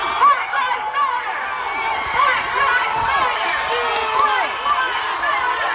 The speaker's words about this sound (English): And look at this, an EMT uses her ambulance loudspeakers to encourage protesters.